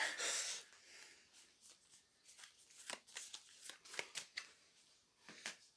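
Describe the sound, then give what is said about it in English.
Playing cards being shuffled during a card game, as dead players shuffle a card each into the draw pile after a Grave Robber card: a soft rushing riffle at the start, then a quick run of crisp, irregular snaps and flicks as the cards fall together, fairly quiet with no talking. “All dead players with cards must choose one card from their hand to shuffle into the draw pile.”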